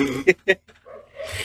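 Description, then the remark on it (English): A dog upstairs in a house lets out two quick, excited yelping barks in close succession, followed by a softer stretch of muffled, indistinct noise and faint voices. “Sounds like the world is going crazy inside my upstairs of my house.”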